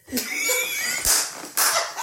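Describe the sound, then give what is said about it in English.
Loud hand claps ring out in a couple of sharp, noisy bursts, mixed with high-pitched laughter and squealing voices throughout. “Why are you clapping so loud, bro?”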